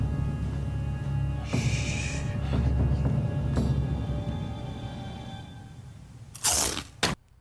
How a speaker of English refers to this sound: Somebody takes a bite of cereal. Somebody crunched.